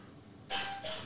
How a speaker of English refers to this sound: Was that my doorbell?